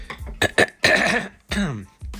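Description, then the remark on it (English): A few harsh coughs and a rough throat clear from allergies in quick succession, loud, with short pauses between bursts and no talking. “And this is, excuse me, frog in my throat. Allergies.”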